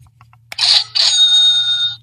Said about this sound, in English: And when we go video, you're going to be able to see the buzzer. Whoever wants to, and whoever reaches for the buzzer and grabs it first, brings the buzzer to the mic, and then when the guy's done, this is the sound you're going to hear.